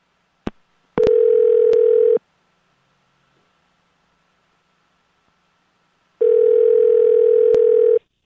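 signal or alarm, phone dialing tone

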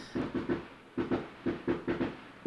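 sound effect, fireworks going off outside

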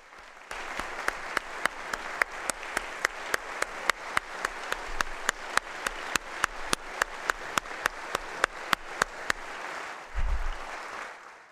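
crowd, audience applause and cheering

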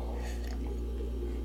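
food or drink, sipping beer

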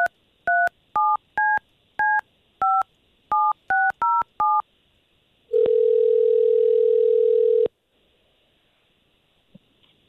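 signal or alarm, telephone dialing tones

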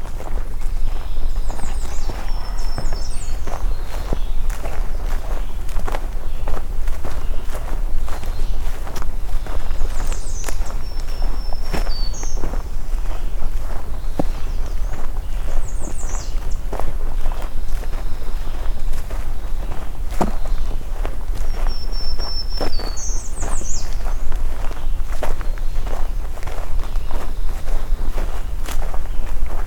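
human body sound, footsteps walking outdoors

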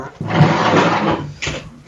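household object, front door being opened

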